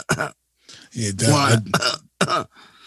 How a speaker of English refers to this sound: Sorry. I don't know if you could. I don't know if you could hear me over my cough.